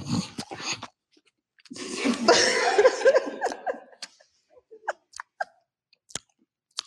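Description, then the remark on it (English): Crunchy chewing of a cheesecake mousse dessert topped with drizzle and crunchy bits: a few short crackles, then a longer crisp, rustling burst of crunching, trailing into sparse sharp crunches and smacks with quiet gaps between them. “It's better when you lick the drizzle and then bite.”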